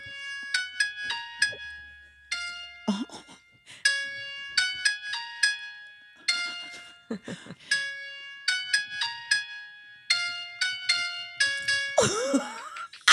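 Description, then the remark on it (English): A simple tune played on a phone piano app, with bright, thin piano notes in quick runs separated by short pauses, each note ringing briefly. No one speaks, and a brief rustle comes at the end. “So I don't have a piano in here. I went and looked in the performance studio. There isn't one, but I did download a piano app on my phone.”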